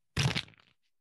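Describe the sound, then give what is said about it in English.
A quick, loud flutter of a card deck from the Ungame being shuffled, a dense papery riffle that lasts under half a second, then tails off into a few softer crackles. No one speaks. “So we literally just shuffle a card deck and draw a question and see if we can learn something fun and new about each other.”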